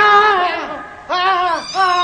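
A cat yowls loudly in three harsh, drawn-out cries as she launches herself in attack at a custodian, the middle cry rising and falling, each separated by a brief pause, with no voices around it.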